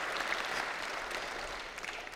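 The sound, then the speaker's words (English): A crowd claps steadily, a dense wash of many hands at an even, moderate loudness that holds through the whole stretch without voices, giving a round of applause for King David. “All right, let's give King David a great big round of applause.”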